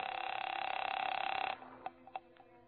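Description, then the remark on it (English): A telephone being dialed at the Hotel Lee in Charleston at 8:30 p.m.: a steady, buzzing line tone holds for about a second and a half, then cuts off into a few sharp clicks as the call connects. No voices. “by the time I checked in, and my first move was to the phone.”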